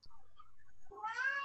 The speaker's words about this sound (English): Can you guys hear the cat? Yes. Yes. I'm busy right now, man.